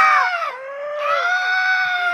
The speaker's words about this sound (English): So I managed to get this CD of seagulls screaming. Oh God, it was awful. Seagulls screaming around the cliffs of Dover. And it's 20 minutes of it.